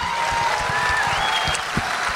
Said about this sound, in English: So clap it up